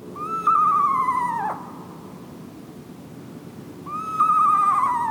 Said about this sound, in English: Sometimes, owls strike us as downright spooky. The spine-tingling call of an eastern screech owl is a case in point.